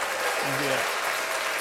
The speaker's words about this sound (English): But we can do an applause.